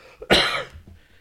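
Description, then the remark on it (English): One harsh, wet cough from a person with a lingering cold bursts out with a gurgling, phlegmy rasp that trails off briefly. No one speaks around it. “I'm fucking like gurgling my fucking cough.”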